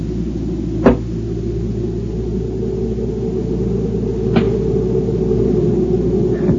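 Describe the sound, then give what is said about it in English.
A rock thrown against a cabin gives a sharp crack, then a second, fainter report follows a few seconds later, an echo from the canyon that sounds like a rifle shot, both over a steady low rumble with no voices. “I found out about the rifle shot, just an echo from the canyon if you throw a rock against the cabin.”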